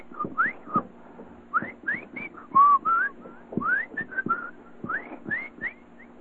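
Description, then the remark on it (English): A voice imitates the shaky, chirpy Morse code of a homemade transmitter keyed with a Boy Scout key wired in series with the power supply, whistling a string of short, upward-sliding chirps in an uneven dot-dash rhythm, moderately loud and mid-to-high pitched, with no talking. “I go, and it was very, very very shaky because it had bad, it had chirps. It would go.”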